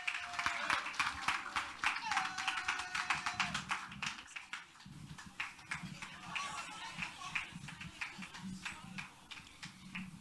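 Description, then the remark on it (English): A church audience claps steadily for several seconds as a girl comes forward to recite a poem, a dense patter of many hands with scattered sharper claps, while murmuring voices and a low hum run underneath. “Let's keep clapping till she gets here, please.”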